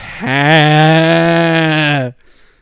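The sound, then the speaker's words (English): A person imitates a sheep's bleat with one loud, sustained, slightly wavering 'baa' lasting about two seconds, then cutting off abruptly into near silence. “Sheep noises.”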